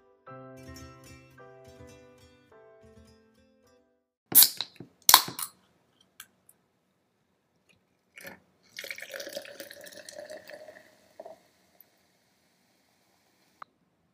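A short tonal jingle, then two sharp cracks like a can snapping open, followed by a few seconds of sparkling water pouring with a bright, fizzy hiss, and a final click.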